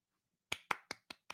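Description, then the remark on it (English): Five soft, evenly spaced hand claps in a quiet golf-clap style, crisp, following a brief silence with no voices. “Golf clap.”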